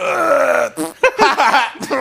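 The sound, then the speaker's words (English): A voice imitates labored grunts while fake laughing: a long, strained groan followed by a burst of choppy, breathy laugh-like sounds and grunts, fairly loud, with no clear words. “You're trying to fake laugh in between labored grunts.”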